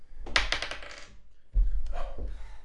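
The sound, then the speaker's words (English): Dice are rolled during a game and clatter across a tabletop in a quick burst of bright, rattling clicks, followed by a second shorter tumble that thuds and settles. The roll comes up 1. No one speaks. “He rolled the 1, everyone.”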